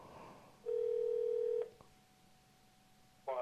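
A telephone line tone sounds for about a second as a call is placed, loud and steady, then cuts off with a click. A faint hum continues before a new burst of line noise at the end.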